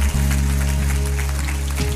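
A church crowd applauds and cheers for everyone who just made the decision to follow Jesus, in a steady, dense wash of clapping, with sustained low musical chords holding underneath the whole time.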